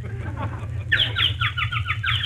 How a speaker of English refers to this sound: Ah, listen to the birdies.